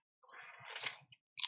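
Crunchy chewing: a dense crackling crunch lasting most of a second, then a brief crunch and a sharper bite at the end, with no one talking.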